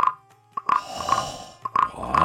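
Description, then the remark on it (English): A voice imitates a frog, making a series of short, throaty croaks in an uneven rhythm, with sharp onsets and a buzzy, nasal mid-pitched tone. “I was beating my drum and doing the frog at the same time.”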